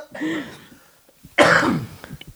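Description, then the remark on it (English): A person coughs hard: a raspy throat sound, a short pause, then a loud explosive cough trailing into a few smaller hacks. “First of all, I apologize for the coughing fit that I just had.”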